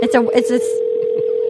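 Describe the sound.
A steady, unbroken telephone dial tone hums at a low-mid pitch as someone dials to call a woman at her home, with a short burst of speech over its first half and faint dialing sounds beneath.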